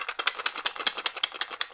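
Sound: dice rattling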